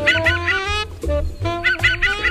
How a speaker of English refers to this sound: Look for the Canada Jay on your next picnic in the Western Mountains or Boreal Forest, but don't leave your oatmeal cookies unattended. Today's Talkin' Birds featured feathered friend, Parasaurius canadensis, the Canada Jay.